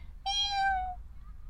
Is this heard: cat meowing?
yes